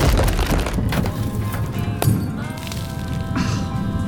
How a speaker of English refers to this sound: Oh my god. Look, right above us. Jesus. Something's torn through the roof. It must be worse than we thought out there.